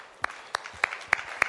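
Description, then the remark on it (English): Clapping from an audience: five sharp, evenly spaced claps in a slow, steady rhythm, moderately loud over a faint background hiss, with no talking. “Please, people should clap for her”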